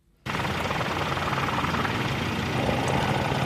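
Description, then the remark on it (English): A helicopter flies over a house on Worsley Road during a fire, its steady, loud engine noise carrying a rapid low rotor chop. It starts abruptly and keeps going without any voices. “This Worsley Road resident first got wind of the fire on Wednesday afternoon when a helicopter flew over his house.”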